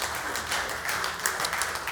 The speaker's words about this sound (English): So we can celebrate that real quick. If you're at home, you can clap. If you're here, you can clap.